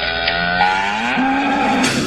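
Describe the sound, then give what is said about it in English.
A single drawn-out cow moo, loud, its low droning pitch rising partway through and holding steady for about two seconds, with no voices around it. “It's Cow Clips of the Week.”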